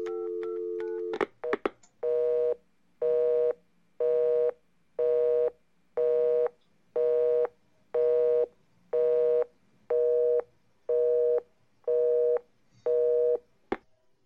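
A telephone dial tone gives way to a quick burst of dialing tones, then a steady busy signal beeps about a dozen times in an even, one-per-second rhythm, clear.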